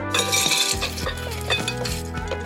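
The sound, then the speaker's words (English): Ice cubes clatter and clink into a bowl in a quick, busy jumble, fairly loud, with steady background music playing underneath and no talking, as an ice bath is made to cool blanched asparagus and stop it cooking. “All right, now I'm gonna make my ice bath.”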